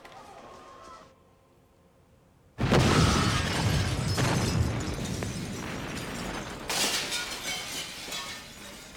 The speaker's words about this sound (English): The door explodes.